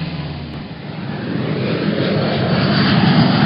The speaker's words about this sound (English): We flew to New York on a tiny Northwest Airlines regional jet. With us, the pilot, and a handful of other passengers.